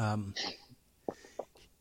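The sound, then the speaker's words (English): A single sneeze: a short voiced intake bursts into a sharp, hissy blast, followed by a few quiet, brief vocal sounds. “Bless you.”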